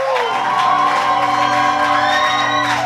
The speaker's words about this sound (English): What kind of shout is that? Amen. Give God a proper shout for the life of your reverend. The man in charge in this place.